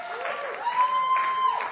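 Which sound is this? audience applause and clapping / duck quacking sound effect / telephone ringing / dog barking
audience applause and clapping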